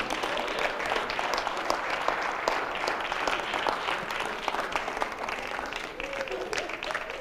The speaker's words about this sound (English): I know that clap there was really, it's just like it started out on one side of the church.